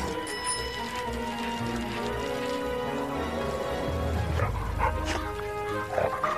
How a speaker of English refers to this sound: Bark, bark, chase, chase.